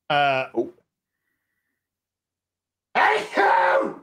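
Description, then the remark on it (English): A short voiced, tonal vocal sound is followed by about two seconds of silence, then a loud, harsh, breathy burst like a sneeze. “I might have sneezed.”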